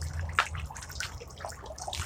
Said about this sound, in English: And we get water fountain again because I am in Tucson at my mother's house. So we get to be outside in the back patio.